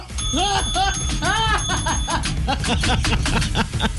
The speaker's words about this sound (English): Just give me the bell. Give you the bell.